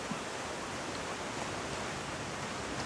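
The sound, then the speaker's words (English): A steady, continuous wash of ocean waves on a beach, an even hiss of surf at constant loudness with no distinct breaking swells and no voices. “Enjoying yourself and breathing to the sounds of the ocean.”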